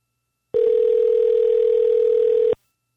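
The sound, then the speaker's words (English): A steady telephone dial tone hums alone for about two seconds while a call is placed, loud and unbroken, then cuts off abruptly into silence. “All right, I think it's about time to get my friend Stephen Finnegan on the phone with us.”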